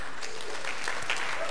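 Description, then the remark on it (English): Steady audience applause, a dense wash of many hands clapping at a fairly even level throughout, with no voices standing out above it. “I'd clap for myself too, but my hands won't reach each other.”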